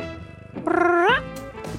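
A single cat meow, fairly loud, drawn out for about half a second with its pitch sliding upward at the end, amid quiet room noise.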